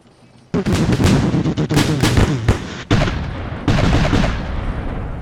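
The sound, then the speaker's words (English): A ship's cannons fire a broadside from a boat alongside: a sudden loud volley of booming blasts that rumbles on for several seconds, with fresh heavy bursts crashing in twice more over the continuous roar. “and you see the other boat is next to you guys, broadsided.”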